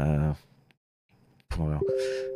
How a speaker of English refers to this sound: Hang on, my Telegram just keeps beeping and it's annoying me.